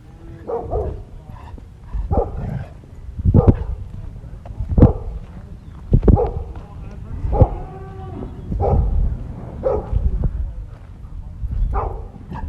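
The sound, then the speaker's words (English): Two dogs, Buster and Tate, bark in a steady series of sharp, loud barks, roughly one every second or so, with a few overlapping yips and whines between them, at Oak Ridge Angus, a property in Knights Valley. “I arrived at Oak Ridge Angus around noon and was greeted by two dogs, Buster and Tate.”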